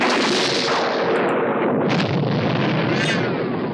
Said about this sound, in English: I'm not committed to that lightning sound effect, but it is a Hanna-Barbera lightning sound effect that I just have.